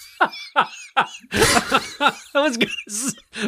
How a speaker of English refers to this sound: You made me laugh so hard I'm coughing.